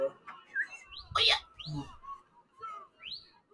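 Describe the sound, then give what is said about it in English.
Several short, high-pitched whistling squeals of audio feedback from an earphone rise sharply in pitch, coming in uneven bursts with one louder noisy crackle, over a low murmuring background. “Also, I hear the whistling to both...”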